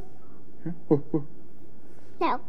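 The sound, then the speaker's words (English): A small child, asked what a dog says, imitates a dog barking with three quick, soft woofs in a row, then a pause and one higher, brighter bark-like call, quiet. “Remember, I've got a brief video of him showing off his knowledge of what animal sounds, what different animals sound like.”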